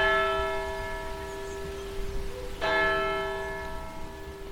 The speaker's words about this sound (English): C is for the church. The best view in town from the top of St Mary's, the heart and soul for centuries, and the bells that you can hear for miles and miles and miles.